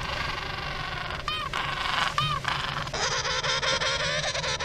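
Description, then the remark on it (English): A penguin, a flightless bird of a cold glacier region, gives two short, nasal honking calls about a second apart, standing out over a steady wash of background noise that grows denser near the end. “This small creature is a penguin.”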